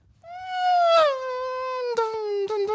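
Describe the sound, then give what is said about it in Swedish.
A voice imitates a Formula 1 car with one long, high, buzzing whine that starts sharply, slides gradually lower in pitch, and is broken near the end by a few short bursts like gear shifts. “Vad tycker du om en imitation av en F1-bil?”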